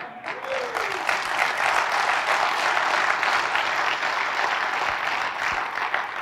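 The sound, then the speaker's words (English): A large audience bursts into steady, dense applause that holds at a loud, even level for several seconds, a continuous wash of many hands clapping with no distinct individual claps standing out. “Now we clap, but let me pause here to give you an illustration.”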